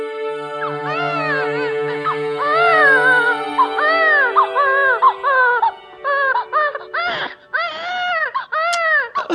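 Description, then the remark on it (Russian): An abandoned infant, found wrapped in costly cloth in the snow, cries loudly in long, rising-and-falling wails that break into shorter, choppier sobs toward the end, with a faint low hum underneath at first. “Боже мой, это ребенок.”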